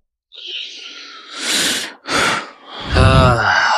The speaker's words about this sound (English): Audible breathing.